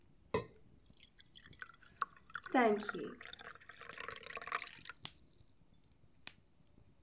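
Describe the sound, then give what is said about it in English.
Water is poured briefly into a glass, its gurgle rising in pitch as it fills, with a few light clinks and drips around it and a short spoken remark. “Please get me a glass of water.”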